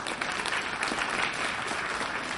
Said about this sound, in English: Why are you applauding? Because even the person who's the most jaded person about marriage looks at that and says, that's awesome.